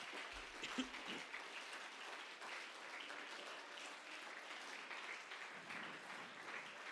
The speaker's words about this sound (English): Would you clap your hands one more time and would you magnify the Lord?